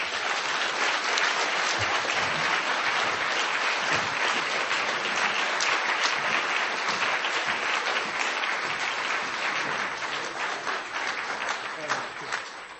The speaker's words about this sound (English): And so please, a round of applause for yourselves for the support you've given us, because you were all instrumental in helping us achieve our dreams and our medals. Thank you so much.